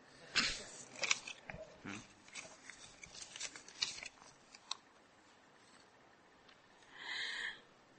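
Paper sheets rustle and crinkle in a series of short, uneven bursts, ending with a longer sliding swish as pages are handed along; no one speaks.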